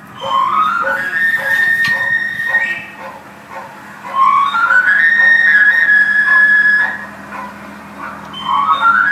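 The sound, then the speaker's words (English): The whistle of a knife sharpener (afilador) roaming a neighborhood in Miami plays tinkly old-time music like an ice cream truck: bright runs that sweep upward and hold high sustained notes, repeating in phrases over a low rumble of street noise. “They have talked about this in Miami, roaming the neighborhood, playing tinkly old-time music that sounds like an ice cream truck, is the afilador, a.k.a. the knife sharpener.”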